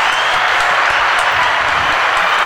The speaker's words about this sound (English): so everyone give him a round of applause.